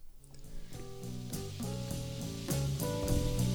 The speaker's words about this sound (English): Appropriate. It's raining.